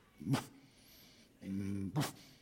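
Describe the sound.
A person imitates the quiet, breathy whisper barks a dog makes when told to sit while wanting food: two short huffed bursts with a brief voiced hum between them, soft, with no other talking.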